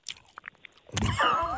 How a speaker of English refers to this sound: be quiet right now and just let the sweet sounds of y'all chewing, okay? Here we go.